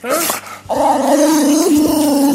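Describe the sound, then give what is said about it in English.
A boxer dog named Ashley makes an excited, growly 'talking' vocalization, a brief rising yowl followed by a sustained, wavering groan that bends up and down in pitch like it's trying to speak, sounding like Chewbacca. “some dogs, they try to... say something to you, and it comes out very funny.”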